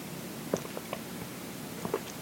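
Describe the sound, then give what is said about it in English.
A few soft sips and swallows of coffee, quiet slurping noises spaced over a couple of seconds with near silence between them and no talking. “And there's an even newer funicular, after I get my sip of coffee here.”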